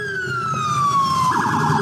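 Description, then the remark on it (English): A loud police phaser siren in New York City: a sustained electronic tone slides steadily downward, then breaks into a rapid pulsing warble, over low traffic rumble with no talking. “Oh, you got that one. The phaser.”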